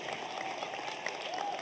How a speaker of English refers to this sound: Oh, golf clap? Really? Come on.